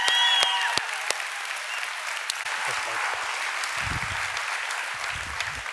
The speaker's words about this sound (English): so excited to introduce him, and want to ask that you would join me in giving him a rowdy round of applause as he comes to bring the word this weekend.